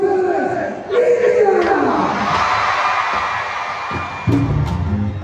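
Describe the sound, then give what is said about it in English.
A large New York City concert crowd cheers and roars continuously as it awaits the arrival of a salsa singer, with rising whoops and shouts swelling over a dense wash of applause-like noise, loud throughout with a fresh burst of yelling near the end. “And so I believe it was her publicist and a photographer and a few other people, and just get ready to be welcomed by an awaiting New York City crowd.”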